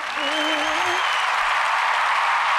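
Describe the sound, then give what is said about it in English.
A steady wash of applause from a crowd, dense and sustained, fills the short stretch at a constant level, with a brief cheer-like voice rising in the first second. “Can I steal my applause for that?”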